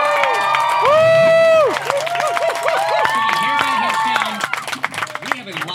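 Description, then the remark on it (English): A pub audience applauds and cheers loudly, with excited shouts and whoops rising over steady clapping, and scattered voices calling out through the crowd noise for several seconds. “We are here at Pub, and a round of applause.”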